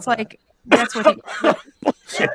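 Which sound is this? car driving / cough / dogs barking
cough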